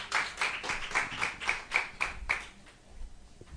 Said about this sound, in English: Y'all give the Lord a good clap offering. I enjoyed this today. Oh, my gosh, how weak was that? Give him a good clap offer.